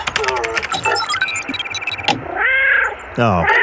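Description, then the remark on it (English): A cat translator gadget outputs warbling electronic tones, followed by two loud, drawn-out cat meows in quick succession. “why don't you fire up the cat translator? See what that does.”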